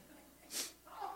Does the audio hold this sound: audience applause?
no